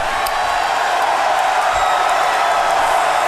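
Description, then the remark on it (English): A big arena crowd in Uniondale, Long Island, roars and cheers for Chris Jericho in a steady, loud wash of noise, with scattered whoops rising above the sustained din for a few seconds. “Chris Jericho, you heard the reception of this great crowd here in Uniondale, Long Island.”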